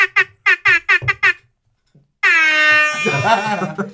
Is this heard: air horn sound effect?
yes